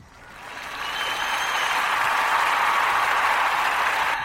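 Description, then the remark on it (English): Canned applause from an old soundboard sound effect, a dense wash of many hands clapping that swells up quickly and holds steady and loud for a few seconds, with no voices. “Yes, you guys all recognize the sound of our old soundboard. Fake laughs, fake claps, fake suspense, fake lightning sounds, fake everything.”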